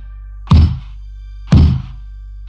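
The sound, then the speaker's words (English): Knocking on a freestanding wooden door with a golden doorknob, standing in the middle of a forest, heard from a few feet away: three heavy, hollow thunks spaced evenly about a second apart, deep and resonant, with a steady low hum underneath and no voices. “What I heard matched what I saw, knocking on a door from only a few feet away.”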